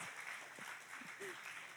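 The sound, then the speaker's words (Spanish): A church audience applauds Jesus in a steady, dense wash of clapping that fills the whole stretch at an even level, with a few brief low voice sounds surfacing underneath. “Go ahead and give the Lord a round of applause.”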